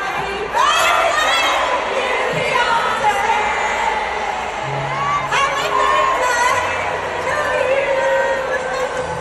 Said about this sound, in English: And finally, … celebrated her 42nd birthday with another sold-out concert in LA. The legendary … came out on stage and led the crowd in a rendition of Happy Birthday.